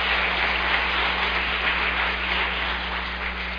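An audience claps together in sustained, steady applause, a dense wash of many hands filling the room for several seconds, with a low electrical hum underneath and no one speaking.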